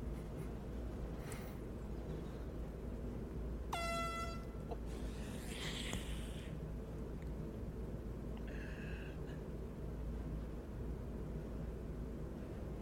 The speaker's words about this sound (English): This is called the golf course air horn. When people tee off, when they're coming down with their swing, we're going to blow these air horns.